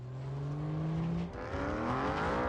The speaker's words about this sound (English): Here's our transforming motorcycle.